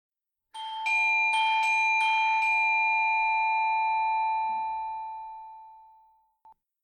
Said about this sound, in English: Alright, ring the doorbell.